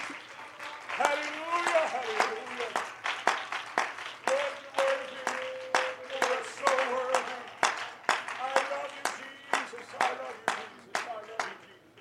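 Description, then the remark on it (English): An audience claps steadily in praise to the Lord before being seated, a fast run of sharp hand claps lasting throughout, while voices call out and shout over the applause. “Can we give the Lord a hand clap of praise before we're seated?”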